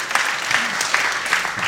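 A short burst of audience applause for a pun, a dense patter of many hands clapping steadily at a fairly loud level, with faint voices mixed in underneath.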